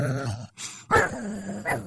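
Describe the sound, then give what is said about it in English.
A robot dog, Robo Cloco, growls on seeing an alien creature: a low, rumbling dog-like growl, broken by a brief pause before a sharper, louder snarl that settles back into a steady growl. Fairly loud, with no talking. “Robo Cloco began growling as soon as he saw the creature.”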